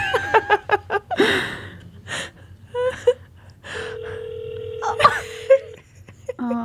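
Quick dialing beeps give way to a steady, slightly tinny ringback tone over a speakerphone, with soft breaths and brief vocal noises.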